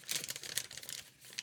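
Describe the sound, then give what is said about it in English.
A piece of yellow notebook paper rustles and crinkles in a quick burst of crisp, irregular crackles as it is unfolded and handled, with no voices. “And here, I have a mysterious piece of yellow notebook paper.”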